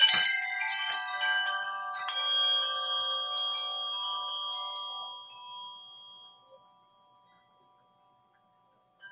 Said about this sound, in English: Okay. Let me ring my bell.